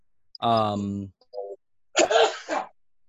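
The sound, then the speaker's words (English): A loud sneeze by a man: a drawn-out voiced intake, a brief pause, then a sharp, breathy burst, heard on its own with no talking. “Bless you, sir. Bless you.”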